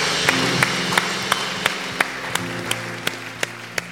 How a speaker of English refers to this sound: Can we give these five individuals that raised their hand a huge round of applause?